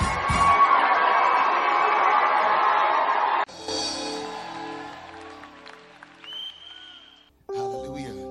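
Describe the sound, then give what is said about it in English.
A large group claps and cheers loudly together for about three seconds as a clap offering to celebrate the Lord, a dense steady roar of applause that cuts off abruptly before other sounds take over. “Celebrate the Lord some more with a clap offering.”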